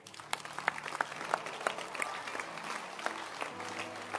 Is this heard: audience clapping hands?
yes